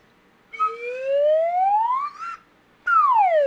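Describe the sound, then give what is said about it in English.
A slide whistle plays a long, steady upward glide, pauses briefly, then swoops quickly back down in pitch. It is loud and alone, with no talking. “It's a slide whistle.”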